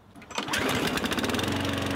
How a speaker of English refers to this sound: Sounds an awfully lot like a lawnmower, doesn't it?